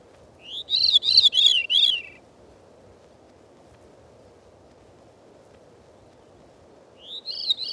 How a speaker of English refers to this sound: Next, the veery's descending spirals.